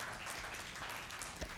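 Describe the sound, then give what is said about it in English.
A crowd applauds steadily, a dense, even wash of many hands clapping at once with no voices standing out, sustained at a moderate level throughout. “Go ahead and clap.”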